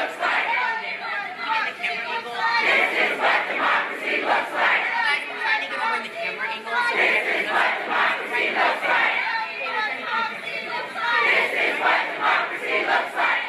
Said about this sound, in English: Protesters at Sacramento International Airport, courtesy of the Sacramento Bee, on January 29th, 2 days after President Donald Trump signed Executive Order 13769, entitled Protecting the Nation from Foreign Terrorist Entry into the United States,